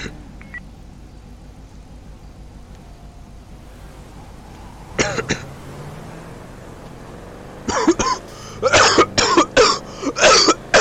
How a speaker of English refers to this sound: That cough.